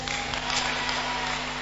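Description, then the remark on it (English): A church audience claps in a steady, dense patter of many hands for about a second and a half, with no voices and a faint low hum underneath. “I thought you are clapping for ourselves.”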